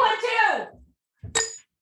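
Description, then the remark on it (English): A voice trails off, then after a short pause two champagne flutes clink together once in a toast, a bright glassy ring that fades quickly. “I have champagne flutes, and I'm cheersing them on for both of us on our behalf.”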